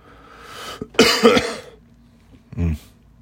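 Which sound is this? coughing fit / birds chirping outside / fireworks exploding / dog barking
coughing fit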